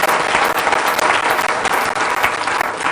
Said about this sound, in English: Again, was that 60% good? Give him applause for 60% good.